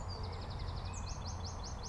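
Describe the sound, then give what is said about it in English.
A blackbird sings a quick run of short, high chirping notes, then a second series of rising chirps, faint over a steady low rumble with no one speaking, among apple trees in bud whose blossom has not yet come out. “Just a blackbird, I think.”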